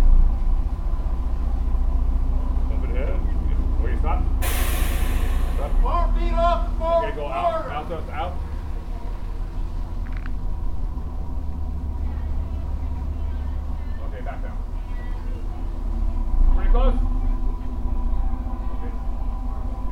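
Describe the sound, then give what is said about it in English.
The engine of an old ferry boat underway on the water rumbles steadily and deeply throughout, with a brief loud hiss near the start and faint, indistinct voices now and then over the constant drone. “So overall, it was a splendid day on the water, and I got to appreciate in person the capabilities of this old but still hardy ferry boat.”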